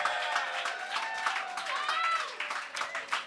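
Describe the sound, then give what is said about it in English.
A crowd applauds steadily, dense rapid clapping rising and falling, with high cheering and whooping voices sliding above it throughout the few seconds. “And how about one more round of applause for our champion”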